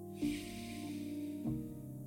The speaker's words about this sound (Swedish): Andas in tre. Låt lungorna fyllas. Och långsamt töm ut luften. Andas in fyra.